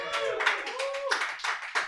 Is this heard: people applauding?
yes